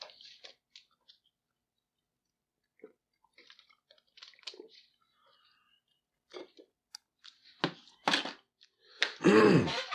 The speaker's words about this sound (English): Let me just get a sip off my water here.